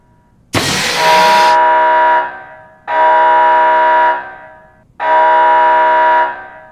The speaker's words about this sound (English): Hirsch is trying to turn off the warning. You've got the fire alarm there that you can accept and acknowledge.